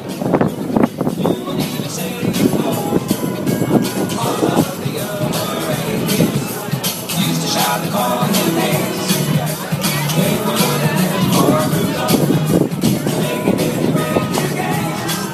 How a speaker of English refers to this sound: So it's proper, full-on, animatronic, sound and music. So I'm going to go right to the start. You might be able to hear some of it now. And we're going to give you an audio postcard of the Fenwick's Christmas window.